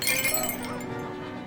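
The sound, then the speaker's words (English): A shop door chime rings out as someone walks in, with a bright, metallic jingle that starts sharply and then fades into a sustained, shimmering tone over about a second and a half. No one speaks. “You hear that door chime.”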